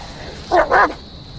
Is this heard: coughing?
no